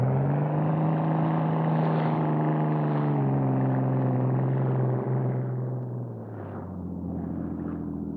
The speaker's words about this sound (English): In a motorboat, Cato had been waiting alongside the yacht. He was ready when the Hornet dropped from the rail. He gunned the engine and the small, fast boat raced toward the dock.